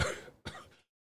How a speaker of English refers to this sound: The air is making me cough. I can't. I've got a cough, and I always seem to have a cough when I do these. Maybe it's the room I'm sat in